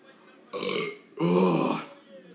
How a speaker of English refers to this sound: Oh, there it is. There's that burp. Oh, I've been working on that.